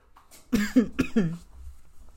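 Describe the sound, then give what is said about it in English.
A short burst of three or four harsh coughs in quick succession, each sharp and raspy, followed by a quiet breathy pause. “This cough is trying to go into next year with me, clearly.”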